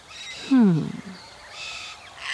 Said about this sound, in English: Oh, there it is again. Oh, I can see it now. Yes, now that I'm close to the tree, it's coming from a cockatoo. We have a few different kinds of cockatoos in Australia, but this one is a red-tailed black cockatoo.